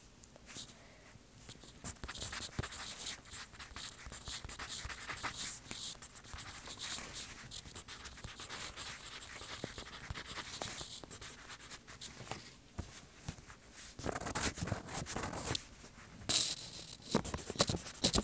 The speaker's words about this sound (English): So, we're going to write that down. So, I want to hear all those pencils again.